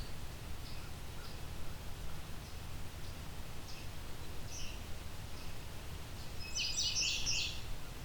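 A few faint, scattered bird chirps lead up to a short, harsh chattering squawk of an eastern kingbird near the end, over a steady low outdoor rumble, next to a quarry. No one speaks.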